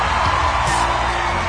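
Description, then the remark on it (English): Steady applause from an audience for a contestant at a show, a dense crackle of many hands clapping at an even, fairly loud level, with a faint undertone of crowd voices and cheering. “Round of applause”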